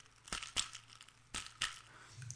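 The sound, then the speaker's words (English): Ice cubes rattle in two quick pairs of crisp, bright clinks, four short bursts in all, with quiet gaps between and no talking. “And if you heard any little shooka there of some ice cubes at the beginning, I doubt you did, because it wasn't very loud, but it should have been like this.”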